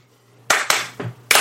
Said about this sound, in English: You're clapping too loud. See, it's peaking. Do it. Yeah, soft clap. Softer. Softer.